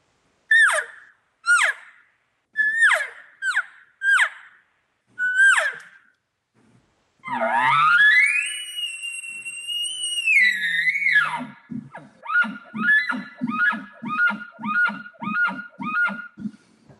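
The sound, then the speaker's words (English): A bull elk call imitates a higher-pitched bugle, technically a smaller bull sound: five short rising squeals, then a long high-pitched whistling scream that bends and drops, followed by a rapid run of grunting chuckles. No one speaks. “and then you'll get a little bit higher pitch on the bugles.”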